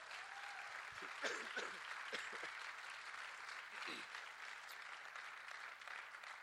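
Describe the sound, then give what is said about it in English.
An audience breaks into sustained applause, a steady dense wash of clapping at even loudness for several seconds, with a few scattered cheers and voices mixed in. “Now you can clap.”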